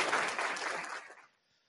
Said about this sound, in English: A weak round of applause. Let me get that up. There we go.